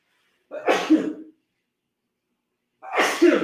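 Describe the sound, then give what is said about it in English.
Two fairly loud sneezes, set off by the lights, each a sharp burst with a breathy tail, separated by about two seconds of silence. “I'm going to sneeze because the lights.”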